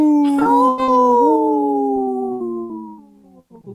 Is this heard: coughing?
no